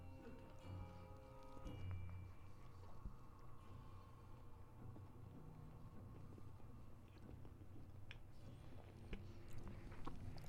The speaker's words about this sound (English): Yeah, we didn't know what to say, so now we're just going to munch into the microphones.